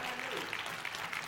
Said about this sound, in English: Come on, let's give God a hand clap of praise.